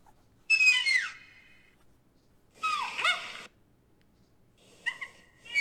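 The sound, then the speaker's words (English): Raccoon-like chirps and a wailing cry come in three short bursts separated by silence. The calls are high, warbling and sliding downward, clear, with no one talking. “Yeah, little chirps. There that you go. One right there.”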